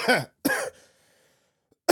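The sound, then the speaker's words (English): Harsh coughing: a sharp cough, a second cough trailing into a raspy exhale, a short pause of quiet, then another abrupt cough bursting in at the end. “all the coughing.”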